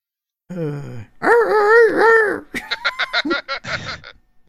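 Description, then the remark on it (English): A loud rooster crow rings out, a long wavering call held for over a second, followed by a quick run of sharp, rhythmic clucking bursts, alone without talk. “Here comes the rooster.”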